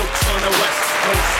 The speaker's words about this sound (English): Hey, hold your applause, man. Hold your applause.